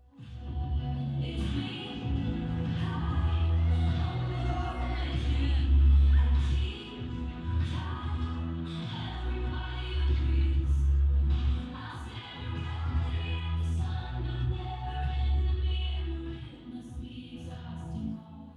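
A live concert song captured from within the crowd, loud and continuous, with booming, muddy bass and blurred instruments, crowd noise blending into the music for the full stretch.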